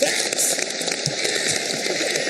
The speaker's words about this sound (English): That's a very long round of applause. We got a big audience in here, you know what I'm saying?